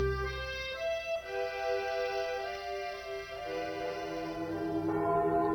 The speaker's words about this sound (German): Festlich und vertraut zugleich klingen die Glocken der Hamburger Michaeliskirche, des weltbekannten Michel.